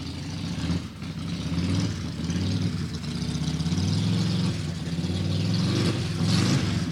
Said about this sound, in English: And let's just start the Harley up now, because this is such a powerful sound for the King.